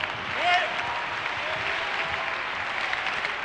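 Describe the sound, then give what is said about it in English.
A crowd claps their hands steadily during a sermon, a dense wash of many hands applauding at an even loudness, with a brief whoop or voice rising near the start. “Oh, let's clap our hands.”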